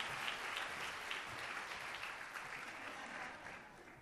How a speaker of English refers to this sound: Whenever anybody walks on stage, you're required to clap. You guys know that, right? All right. Just to make sure. It fills the silence.